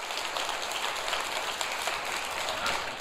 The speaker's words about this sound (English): And then give the living Savior a great applause of praise. Say it with me. Christ is risen indeed. Give him a great. Hallelujah.